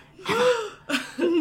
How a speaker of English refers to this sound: And then they all gasp.